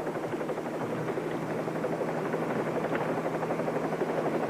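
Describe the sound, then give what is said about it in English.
A helicopter drones steadily in flight while carrying a patient, its rotor and engine producing a continuous, dense whirring roar with a low hum underneath, loud throughout with no voices. “Helicopter 38 Bravo to Longwood Field.”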